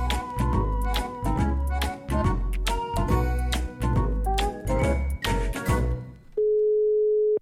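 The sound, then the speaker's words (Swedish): Upbeat music with a driving beat plays for several seconds, then cuts to a single steady ringing tone of an outgoing phone call to someone in Gothenburg, sounding clearly for about a second at the end. “Jag tänkte att vi ringer upp”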